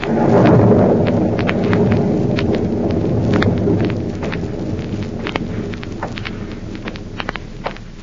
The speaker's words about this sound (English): And now back to Counter Spy, an eerie, stormy night at the former hideout of Professor Horn in Illinois.